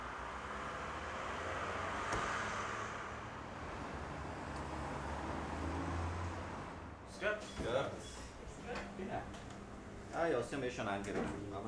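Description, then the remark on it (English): An electric car used by a hospital to fetch urgently needed medical supplies from pharmacies in town drives along with a steady, smooth hum of road and wind noise for several seconds before people begin talking over it. “Once again, it's a job for the electric car.”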